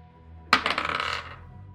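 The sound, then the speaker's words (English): Dice rolled for an intimidation check in a tabletop role-playing game clatter onto a hard table with a sharp first hit, then tumble in a quick run of bright rattling taps that fade out within about a second, landing on 16. Nobody speaks. “Roll for intimidation, motherfucker.”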